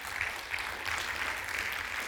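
Steady audience applause, a dense crackle of many hands clapping at an even, moderate loudness throughout, with no voices standing out.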